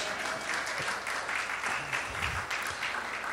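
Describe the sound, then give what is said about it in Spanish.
A steady burst of audience applause, many hands clapping in a dense, even crackle that holds at a fairly loud level for a few seconds, with no voices over it. “Sí merece un aplauso, ¿verdad?”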